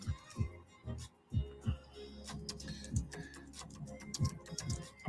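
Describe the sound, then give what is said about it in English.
Irregular taps and clicks of someone typing a social media post, fairly quiet, with soft low thumps mixed in among sharper clicks. No one speaks. “I'm just typing this for Instagram.”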